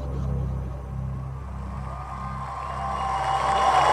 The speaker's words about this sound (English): You know what those guys are cheering for? I can't wait to find out.